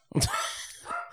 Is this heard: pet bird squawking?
no